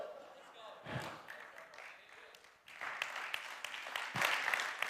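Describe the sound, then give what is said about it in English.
An audience claps after the preacher finishes preaching, in a dense, crackling wash that swells louder partway through, with a few heavier thumps and a murmur of voices mixed into the applause. “I did not do that for a clap.”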